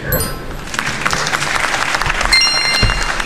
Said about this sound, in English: You know, he's always trying to clap.